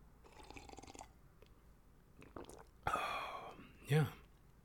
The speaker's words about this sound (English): Quick sip of water, boss. Don't mind me, boss.